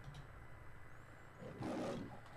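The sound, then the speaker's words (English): A single lion roar in the Canon Films opening intro of a movie, swelling up after a low rumbling lead-in, a deep, gravelly burst of growling that peaks loud and then tapers off, with no voices over it. “They killed more lions making this movie than they did dogs and Milo and Otis.”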